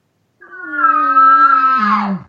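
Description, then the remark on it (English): A voice imitates a bull's short, low growl: a single steady, buzzy tone lasting under two seconds that dips lower at the end, heard on its own. “And he gave us that sound right there. That growl, do it again.”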